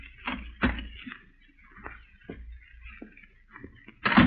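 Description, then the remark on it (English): A door handle rattles and its latch clicks several times in a short, uneven sequence as someone tries the unlocked front door of a dimly lit house on a deserted street, ending with a louder thump as the door swings open, with no talking. “You were surprised when you tried the door and found it unlocked.”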